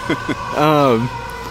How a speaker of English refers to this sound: So maybe I'll let the siren pass for a second.